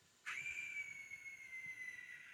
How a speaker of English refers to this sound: Yeah, that is a whistle that someone is blowing into. Right. That's terrifying.